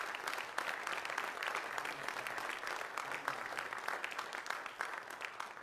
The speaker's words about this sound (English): Can we give Jesus another hand clap of praise in this house today?